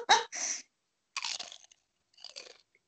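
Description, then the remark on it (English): Crunchy chewing while eating guacamole, with a sharp loud bite and crunch at the start followed by two softer bursts of crackly munching after short pauses. “I'm eating.”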